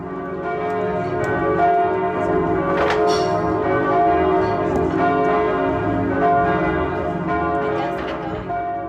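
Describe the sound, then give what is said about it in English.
Church bells of St. Jacob's Church ring continuously, their overlapping metallic tones layering into a rich, sustained peal at a steady, fairly loud level, heard from the patio of a beer pub in the church's shadow, with faint background chatter underneath. “And as if it couldn't have been any more magical, there's these church bells going off in the background.”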